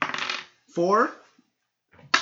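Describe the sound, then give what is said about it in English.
Dice clatter and rattle across a hard tabletop in two quick, bright bursts, with a brief ringing, wobbling tone between them as something settles. No one speaks. “That's cracked dice. Another cracked dice.”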